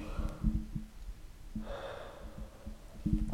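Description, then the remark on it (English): One long, breathy yawn from a tired person, an airy drawn-out exhale that swells and fades, with a few soft breathy sounds and low rumbles before and after. “Sorry, big yawn.”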